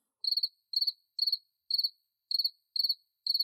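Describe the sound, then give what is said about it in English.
Crickets chirp in a steady, even rhythm, about seven bright trilled bursts with short gaps between them, clear with no other sounds or voices. “Just crickets.”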